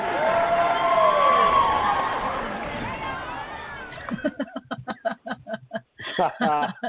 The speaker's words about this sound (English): They get a cheer, assuming I can find it. Here we go.